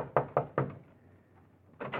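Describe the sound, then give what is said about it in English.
A fist pounds heavily on the door of a copy room three times in quick succession, then after a brief pause two more thuds land, loud with a dull, booming resonance. “And you pray there's still someone in the copy room as you pound on the door.”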